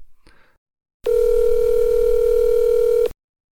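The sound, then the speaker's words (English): A steady, unbroken telephone dial tone, heard while placing a phone call, hums loudly for about two seconds, then cuts off abruptly, preceded by a faint click or rustle. “We could call. Let's call Andy. What's his phone number?”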